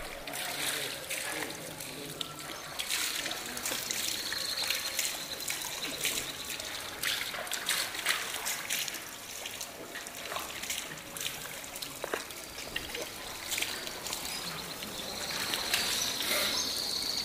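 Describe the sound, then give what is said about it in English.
Water trickles and splashes steadily from a fountain in the courtyard of a Quranic school in the Medina, where men wash their feet, hands and face before prayer; a continuous bright hiss broken by small irregular spatters, holding an even, moderate level throughout. “Men who live and work in this part of the Medina come here to pray, but before they do, they remove their shoes and wash their feet, hands, and face at the fountain in the school's courtyard.”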